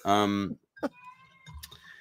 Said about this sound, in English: My cat's fine. Don't worry. Okay. Just has some stuff to say.